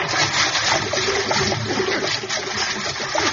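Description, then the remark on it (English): The boat Nancy Root sinking into water, heard as a continuous churning rush of splashing and surging water that holds a steady, fairly loud level throughout, with no voices. “Oh, she's going under.”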